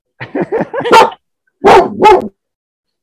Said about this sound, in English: I don't think the dog likes it. The dog did not like that.